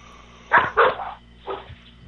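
A dog barks three times: two quick, sharp barks close together, then a pause and a single softer bark, over a faint steady background hum.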